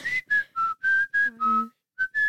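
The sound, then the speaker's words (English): A person whistles a short tune, about eight clear, separate notes at shifting pitches, with a brief pause before the last two notes. No one speaks. “Should I whistle some music?”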